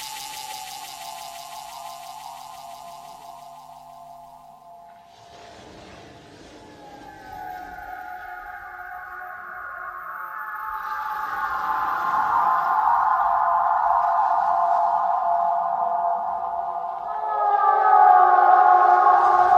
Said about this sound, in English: And the whale song signifies something special.